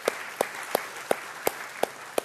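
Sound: audience applauding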